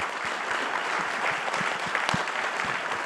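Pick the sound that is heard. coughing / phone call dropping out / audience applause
audience applause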